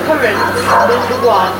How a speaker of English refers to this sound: There's a dog trying to join in there.